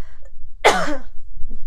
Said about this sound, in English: Oh my gosh, I'm gonna cough again.